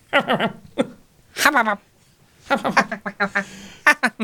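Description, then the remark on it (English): A human voice imitates a seagull, letting out a run of short, nasal squawks, then a longer rising-and-falling cry, and finally a rapid string of loud yelping calls. “A really good impression of a seagull.”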